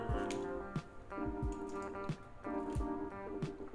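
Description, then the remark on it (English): Wet, watery drips and gulps repeat every half second or so, like water being poured or sipped, over a steady humming tone. Nobody speaks. “But before we even get started, get that motherfucking water, baby.”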